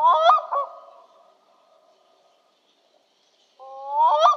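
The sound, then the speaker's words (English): A black-throated loon gives harsh, honking calls in two bursts, one at the start and another after about two seconds of near silence. The calls are fairly loud, with no talking. “And here's a black-throated loon, whose name sounds like a Victorian put-down.”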